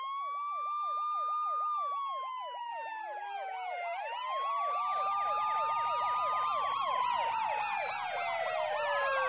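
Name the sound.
emergency sirens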